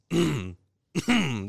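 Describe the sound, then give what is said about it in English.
A person vocally imitates coughing and throat clearing: two loud, strained voiced bursts separated by a brief pause, with no other speech. “Eventually, I coughed good enough to where I caught the big ass cough where I was like, like that.”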